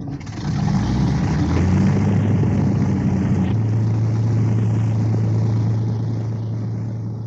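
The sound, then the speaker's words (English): The number two piston engine of a veteran de Havilland Mosquito, some 40 years after its first flight, starting up as it prepares for takeoff with a British Aerospace test pilot, quickly swelling into a loud, steady roar with a deep droning hum that steps slightly in pitch midway, with no voices. “Some 40 years after its first flight, a veteran Mosquito aircraft prepares for takeoff in the hands of British Aerospace test pilot”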